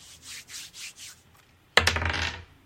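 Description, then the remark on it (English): Dice rattle in four quick shakes during a game of Never Have I Ever, then a sharp clatter as they are thrown and tumble across a hard surface before settling. Fairly loud, with no voices. “Roll the dice, please.”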